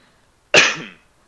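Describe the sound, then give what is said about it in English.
A single sharp, explosive cough from a person who swallowed a little water the wrong way bursts out, trailing off over about half a second, with near silence before and after. “I swallowed a little bit of water in the wrong tube.”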